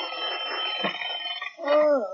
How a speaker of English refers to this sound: It's 7 o'clock. The girls are still asleep when the alarm clock rings.